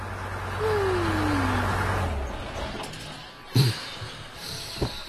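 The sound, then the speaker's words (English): A truck engine rumbles and winds down as the vehicle slows and comes to a stop at a police checkpoint, followed by a couple of sharp clunks like a door or latch. “We meet up again with Odumbe and the boys as they reach a police checkpoint.”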